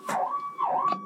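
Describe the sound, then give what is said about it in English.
An ambulance siren wails behind the speaker on the road, its steady tone dipping and rising in quick sweeps over low road rumble, with no one talking. “I have an ambulance behind me, so hold on.”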